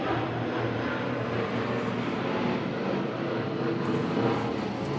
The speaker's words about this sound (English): Got an airplane going overhead? Only a little one. Are you right by an airport? Actually, it's been very good. They've changed the flight pattern. That was a tiny one.